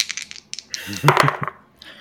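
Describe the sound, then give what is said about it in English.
A handful of six dice rattles and clatters: scattered sharp clicks, then a denser tumbling burst across a hard surface that quickly settles, with a faint voice briefly underneath. “This is a 6 dice roll for me”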